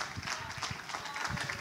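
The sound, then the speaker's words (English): A crowd applauds steadily and fairly softly, a dense patter of many hands clapping at once, with no distinct voices rising above it, welcoming the parish pastor at an evening gathering in a parish. “So a warm round of applause”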